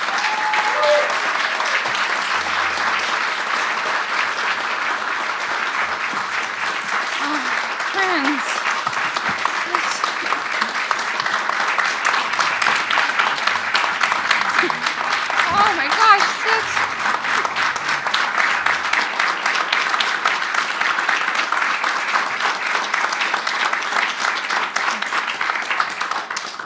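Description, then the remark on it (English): A hearty round of applause from a crowd for a GOMS honoree being recognized by a school, steady and loud throughout nearly half a minute of dense, continuous clapping, with a few faint voices and cheers mixed in. “Ladies and gentlemen, brothers and sisters, friends, please join me in a hearty round of applause for the GOMS honoree”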